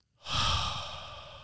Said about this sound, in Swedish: Hur andas du då? Just det. Man kommer ner i... Man blir lite så här... Djupandning.